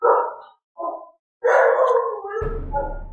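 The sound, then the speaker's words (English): Dogs bark at home, two quick barks followed by a longer, drawn-out bark that trails into a howling yelp. The barks are loud, with no talking. “My dogs are home.”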